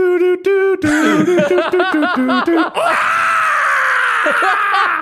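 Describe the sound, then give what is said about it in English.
A voice imitates the Five Nights at Freddy's 1 jump scare scream: a few wavering, moaning vocal sounds build into a loud, harsh, raspy screech held for about two seconds. “He sounds like the Five Nights at Freddy's 1 jump scare. the like screamies.”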